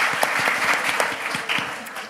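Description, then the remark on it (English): Dense audience applause for guests as they head off the stage, a steady wash of many hands clapping at an even, fairly loud level for about two seconds, with no voices standing out above it. “Please give these guys a round of applause as they head off the stage.”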